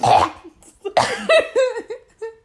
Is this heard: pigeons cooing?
no